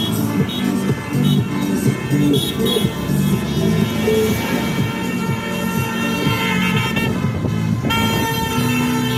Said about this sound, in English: You obviously hear the horns beeping on the cars. But here is northwest London in Harrow.